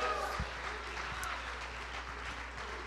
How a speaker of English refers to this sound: Praise God. Come on, clap our hands like we really mean it this morning. Hallelujah, hallelujah, hallelujah.